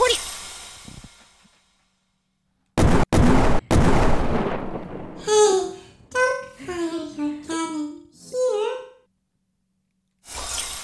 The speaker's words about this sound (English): Okay, yeah. That was a weird... I was trying to cannon the... You were shooting cannons into the quiet realm.